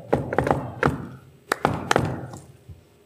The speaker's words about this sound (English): Anyways, the crew heads to Vendel's Key. I knock shaving a haircut on his door.